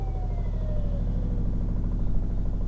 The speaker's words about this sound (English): That helicopter is at my house, not part of the movie. Although it could easily be part of the movie.